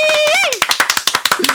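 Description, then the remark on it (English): Audience clapping breaks out after a short, high rising-and-falling cheer: a quick, fairly steady run of loud, sharp claps, about ten in a second. “Let's get it lit and clap it the fuck up for the kid.”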